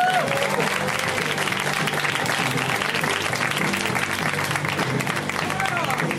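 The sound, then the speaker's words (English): A crowd at a comedy show applauds loudly and steadily for the full six seconds as comedian J.F. Harris is introduced to the stage, a dense wash of clapping with scattered cheers and voices mixed in and what sounds like music faintly underneath. “A round of applause for J.F. Harris, everybody.”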